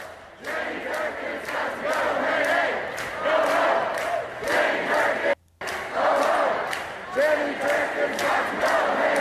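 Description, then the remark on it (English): A large protest crowd walking into City Hall yells and chants together in loud, overlapping bursts of shouting, a dense wall of raised voices that cuts out briefly for a moment before the roar resumes. “I want to hear what the fuck they're yelling.”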